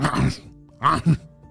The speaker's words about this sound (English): had just waved goodbye to … as he sneezed in the background.